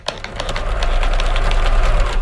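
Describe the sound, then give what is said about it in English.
An old sewing machine that dates back to World War I runs steadily, its motor humming with a rapid, even mechanical clatter that holds constant throughout without pausing. No voices are heard. “When I look at this sewing machine, especially in these difficult days, I think of what this sewing machine, you know, what it's kind of lived through.”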